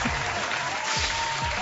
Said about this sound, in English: Can I get a round of applause for the MTA once again?